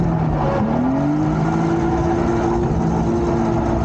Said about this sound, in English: So since it was wet out, I decided to go on the oval and play around. You've never been on the oval, right? But you turn it up, you can hear my engine going like hell.